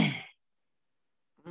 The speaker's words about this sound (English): Sorry, I had to cough. My bad.